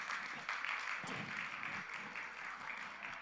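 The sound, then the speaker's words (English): Steady audience applause for a young volunteer chosen to play Peter Pan, a dense wash of many hands clapping continuously at an even level for a few seconds, with no talking over it. “Round of applause for our Peter Pan.”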